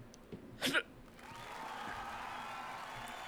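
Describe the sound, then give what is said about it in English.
A live crowd begins cheering, rising into a steady, sustained roar of many voices after a short burst of noise at the start, with no speech over it. “Are those people cheering for us?”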